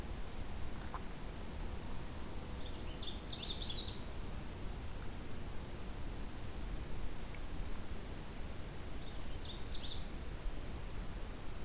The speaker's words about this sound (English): There's a Canada warbler. I was expecting a black and white at this spot, but Canada warbler is quite nice too. It's being a very quiet bird so far. There we go.